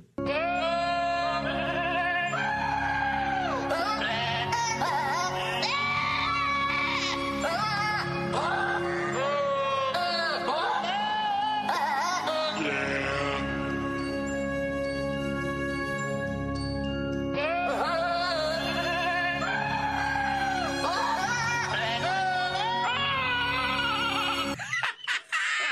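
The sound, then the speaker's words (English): Loud goat screams and bleats are pitched to carry the melody of a Christmas carol over a steady instrumental backing with light jingling, continuing almost without pause for the whole piece. “Screaming goats, starting with Holy Night.”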